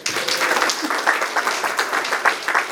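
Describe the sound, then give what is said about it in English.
A crowd breaks into steady applause to welcome a new priest associate, many hands clapping in a dense, sustained patter at an even loudness for a few seconds, with no voices on top. “So let's give him a hand first.”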